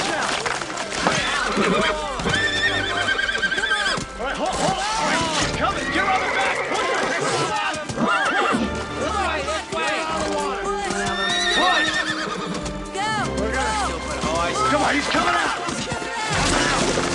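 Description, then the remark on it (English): A horse whinnies and neighs repeatedly in loud, distressed bursts while struggling in water, amid constant thrashing commotion, with people shouting over the chaos throughout. “It looked like they just tried to drown a horse and were like, hopefully our actors are fast enough to save this horse.”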